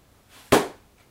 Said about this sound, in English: I should make the laptop closing the end. Yeah, do it right now.